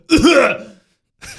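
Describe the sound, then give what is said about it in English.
A person gives one loud cough with a throaty, rasping quality, vocally imitating a sound-effect button that coughs. A short pause follows, then another breathy vocal sound begins. “Oh, you want a sound effect button that coughs.”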